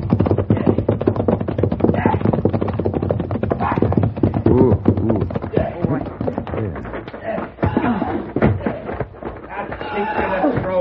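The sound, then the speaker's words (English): Horse hooves clatter and stamp in a rapid, irregular flurry of sharp knocks as a man beats the horse, mixed with voices and scuffling commotion throughout. “What's he doing, beating that horse?”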